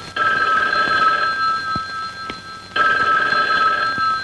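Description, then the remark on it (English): A telephone rings in two long bursts separated by a short pause, with a bright, steady electronic trill, fairly loud, no voices present, in a William Castle film starring Joan Crawford about two girls making prank phone calls. “Two girls are prank phone calling people, and when they answer, one of them says, I saw what you did, and I know who you are.”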